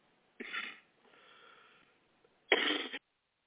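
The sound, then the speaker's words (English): Two harsh coughs about two seconds apart, separated by a quieter raspy breath; the second cough is the loudest. “I'm sorry, doing a lot of coughing still.”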